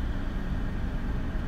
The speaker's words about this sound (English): If you hear, like, blowing in the back. Excuse me. That's the air blow. I'm sitting in my car right now.